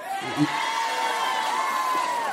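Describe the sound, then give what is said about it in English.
A live crowd cheers and whoops continuously, a loud sustained roar of voices with high shouts rising above it, holding steady throughout. “Wow, this crowd doesn't want you to go away.”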